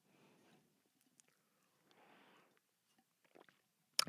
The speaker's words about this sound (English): I will take a sip of this fine high-quality H2O, and then I will take a deep breath for Miss Melissa, the bathtub mermaid, and then we shall perform